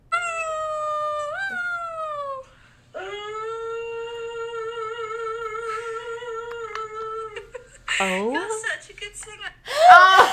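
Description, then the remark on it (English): A dog in a video posted on Twitter howls in long, sustained notes that waver with steady vibrato, pausing briefly between phrases before ending in a couple of sharper, rising yelps. “Okay, mine is actually a video tweet, which is why it's an honorable mention, but it's can't stop thinking about that dog singing with perfect vibrato.”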